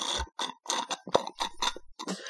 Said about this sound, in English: I'm gonna need to take a sip of this tea that I have prepared.